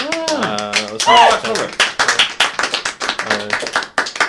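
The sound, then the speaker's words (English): A burst of lively clapping with rapid irregular claps running throughout, mixed with a couple of rising and falling whoops or cheering voices near the start. “Oh, it's all clap.”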